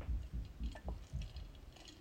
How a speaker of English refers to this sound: Let me just get a sip of water before we start talking about Southern Charm.